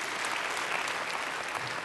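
A church audience claps together in steady, dense applause as a clap offering to the Lord, a continuous wash of many hands at an even level that fills the whole two seconds with no voices standing out.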